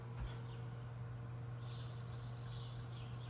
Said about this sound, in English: Dude, the birds are so loud, dude. Listen to them.